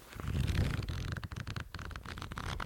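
Pages of a book being flipped: a steady run of papery rustles and quick flutters lasting a few seconds, with no talking over it.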